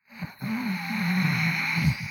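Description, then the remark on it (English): A person doing a breathing meditation breathes out with a low, sustained growl from the back of the throat, a rough, raspy rumble that holds steady for nearly two seconds after a brief catch at the start. It sounds clear. “I thought at first you were growling at me for asking you to give a demonstration, but no, that growl is the breathing meditation. Yes, you're breathing in the back of your throat.”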